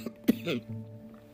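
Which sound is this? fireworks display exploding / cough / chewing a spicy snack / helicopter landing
cough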